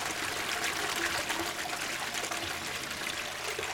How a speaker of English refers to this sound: It's just running out. Yeah, the water is just running. The water we're just pouring in, it's just running out on the floor.